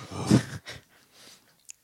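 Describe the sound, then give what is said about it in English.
Breathy panting in a few quick, uneven huffs, the first strongest, then softer ones, with a tiny click near the end. No one speaks. “No, she's just panting.”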